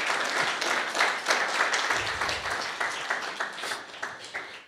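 A crowd applauds in appreciation of a man who has just shared his story, dense overlapping claps forming a bright, crackling wash that holds even and fairly loud for several seconds, then begins to thin out toward the end.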